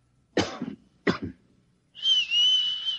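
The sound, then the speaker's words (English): Two short, sharp coughs in quick succession, followed by a sustained human whistle held on a steady high pitch for about a second. Fairly loud, with no talking. “Look, I'll cough twice, like this. And you whistle back.”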